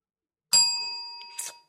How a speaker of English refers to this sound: Bell sounds friendly. Does it? Wrong.